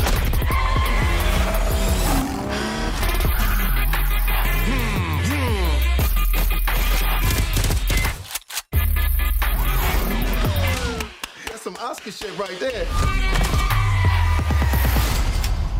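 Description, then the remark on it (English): Loud, busy music track with car sounds and gunfire mixed in: engines revving, tires squealing and sharp gunshot bangs. The sound runs almost continuously, broken by a brief near-silent gap partway through. “all had like car noises and gunfire like mixed into the track.”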